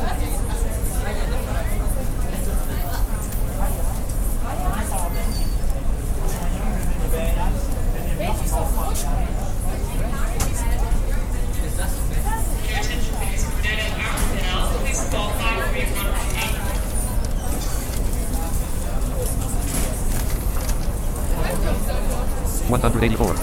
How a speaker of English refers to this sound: If I don't want to hear all this noise, I can press Alt-O to close the cockpit. Bye-bye. Now all we hear is the airport noise.